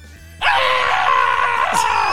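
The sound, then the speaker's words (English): A person lets out one loud, sustained scream that bursts in abruptly and holds steady for nearly two seconds, with a slight waver near the end. “Okay, now give us another scream.”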